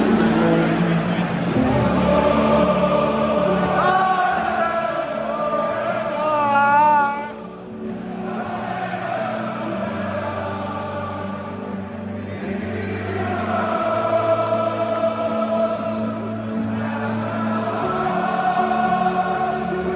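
A football stadium crowd chants in unison before the game, a loud, continuous wall of voices carrying a sung, melodic refrain that swells and dips over about twenty seconds.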